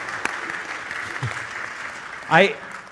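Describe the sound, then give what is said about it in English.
An audience at North Suburban claps in a steady, dense patter of many hands that holds throughout, with a brief voice rising over it near the end. “Now, I just mentioned, oh, you can clap for North Suburban.”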